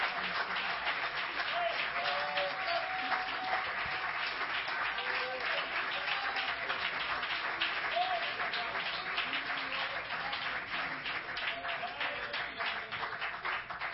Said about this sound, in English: Come on, I wonder if somebody can stand up and clap your hands right now. Come on, can you stand and give Him praise right now?